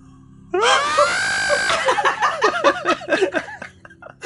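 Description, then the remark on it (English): A person belts out a loud, sustained mock scream for about a second, which breaks straight into a run of choppy laughter. “And he screamed very loudly.”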